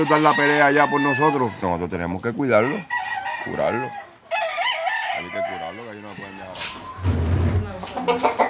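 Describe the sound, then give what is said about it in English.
Several fighting roosters, kept in rows in a family's backyard, crow loudly, their strained, wavering calls overlapping one after another, with some clucking and a rougher, lower squawk near the end. “If the roosters have injuries from their fights, they tend to their wounds.”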